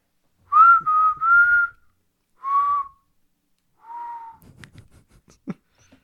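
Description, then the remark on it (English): A person whistles a short, wavering tune into a microphone: three connected notes, then two shorter phrases, each fairly loud, followed by quiet rustling and a faint click. “Can you hear that? Your whistle?”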